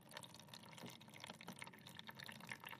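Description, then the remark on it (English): A steady, gentle trickle of water running out of a tank into a bowl as a blob of plasticine is put into the tank and displaces the water, with small drips and splashes continuing throughout, no voices present. “So we're putting one blob of the plasticine into one of the tanks, and water is now trickling out into the bowl.”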